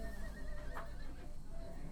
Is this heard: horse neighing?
yes